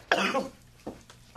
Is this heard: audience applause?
no